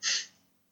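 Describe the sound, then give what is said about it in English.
A single short, breathy snort or sharp exhale from a female pet dog named Evie breathing on a person's neck, fading quickly into quiet. “Oh no, she's just like breathing on your neck.”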